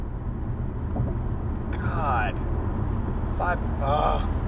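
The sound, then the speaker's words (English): Steady low rumble of road noise from inside a car moving in traffic, continuous throughout, with a man's voice speaking briefly over it in two short bursts. “Fuck this bullshit-ass traffic, bro.”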